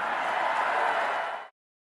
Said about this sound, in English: President drawing some applause there at the VFW from his supporters in Kansas City.